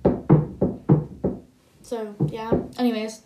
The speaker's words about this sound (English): My chair's wobbly, so I might hear a bit of...